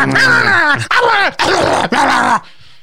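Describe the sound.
A person vocally imitates a beaver's grunting growl: four loud, strained, throaty bursts with sliding pitch, back to back, then a sudden stop.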